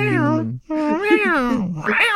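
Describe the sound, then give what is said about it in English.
A person's voice imitates a cat sounding a tornado warning, letting out two long, wavering meows that rise and fall like a wailing siren, loud with a brief pause between them. “That's my impression of a cat doing a tornado warning.”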